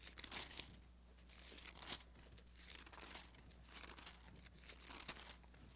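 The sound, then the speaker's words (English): Soft, papery rustling comes in several brief bursts as Bible pages are turned to John chapter 15, fairly quiet over a low steady hum with no voices. “I hear a few pages rustling.”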